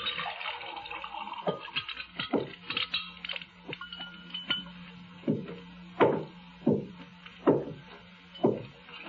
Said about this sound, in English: The three glasses were still on the table where she'd set them. Sister Love lifted the pitcher and began to pour the lemonade.